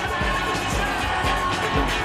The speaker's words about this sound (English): They're applauding the DJ. Not the music, not the musician, not the creator, but the medium.